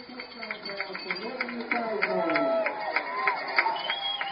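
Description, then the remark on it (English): A large stadium crowd at a football game cheers after a 75-yard touchdown pass, a dense, continuous roar of many voices, swelling louder partway through and staying loud to the end. “That electrifies the crowd a little bit.”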